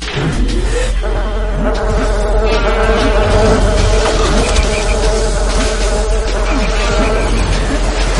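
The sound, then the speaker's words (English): Loud, continuous insect-like buzzing from a swarm of tiny, fast dragonfly enemies on the first level of a video game, several droning wings layered together in a steady hum with no talking. “The frogs and the fucking dragonflies.”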